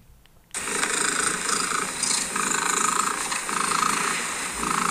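A loud, raspy cat purr starts abruptly after a brief quiet moment and continues steadily, rising and falling in gentle rhythmic swells with each breath. No one speaks over it.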